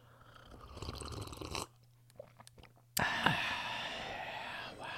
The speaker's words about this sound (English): we would like to also sip on some coffee. Okay, let's try and get it.